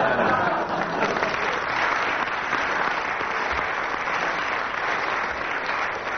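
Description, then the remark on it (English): A steady, spontaneous burst of audience applause, dense clapping from a sizeable crowd that stays loud and even for several seconds without letting up. “And with that spontaneous burst of applause from the audience,”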